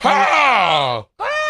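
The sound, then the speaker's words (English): A person's voice imitates an adult bird's call: one loud, drawn-out, harsh cry sliding downward in pitch for about a second, then a short pause before a second cry begins. “You sound like the birds in Popeye because humans do the bird sounds.”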